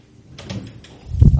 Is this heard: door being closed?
yes